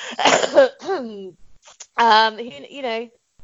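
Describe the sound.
A rough, raspy smoker's cough bursts out, followed by strained, throaty voiced sounds and another phlegmy hack, with throat clearing.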